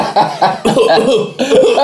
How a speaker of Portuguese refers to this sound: Estou com tosse, oh mister.